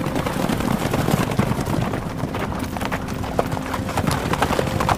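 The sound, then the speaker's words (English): The hooves of two racehorses pound in a fast galloping rhythm down the stretch of a race, steady, the thudding beats repeating densely over a rough, breezy background noise. “I can hear the footsteps of my horse, the footsteps of his horse.”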